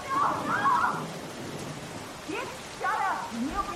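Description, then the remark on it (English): Steady rain patters down with a low rumble of thunder beneath it, outside a house with all its lights on beside a cornfield, while faint muffled voices come and go in the background. “Lee looks up at the house, with all of its lights on and the thunder in the background.”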